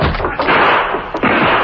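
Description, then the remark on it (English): A cabin door is flung open with a loud bang and rattle, set against a dense, noisy clatter of a burst of gunshots that fills the short moment, with a sharp knock near the end. “As they opened the door, a fresh burst of shots sent them scurrying back.”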